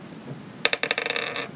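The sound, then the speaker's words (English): Dice are rolled for perception checks and tumble across a hard surface: a sharp first hit followed by a quick, bright rattle of clicks that gradually settles, lasting under a second with no voices. “Can you roll perception checks?”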